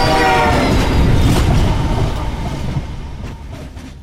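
A train with a cattle catcher roars past, its horn blaring at the start over heavy rumbling and rattling wheels, then the noise gradually fades as it moves away.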